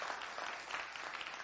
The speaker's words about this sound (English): If you're in a community group, I want you to applaud nice and loud right now, all right?